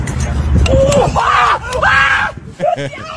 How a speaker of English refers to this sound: Is that how we screaming in Germany? Is that how the Germans sound when they getting beat up?